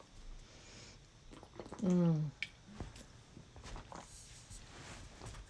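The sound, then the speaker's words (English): A person drinks water: quiet sips and wet mouth noises, with one louder, throaty gulp near the middle, then soft breathing and small clicks afterward. No one speaks. “So you want to, I'm going to drink some water.”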